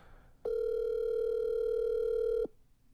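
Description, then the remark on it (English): A phone line's ringback tone sounds once, a steady electronic burst lasting about two seconds, loud and clear over a faint background hiss, with no voices. “She better answer her fucking phone.”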